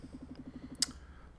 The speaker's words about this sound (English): Sounds like a phone vibrating. Oh, sorry, my phone is on my bench and it is going good off.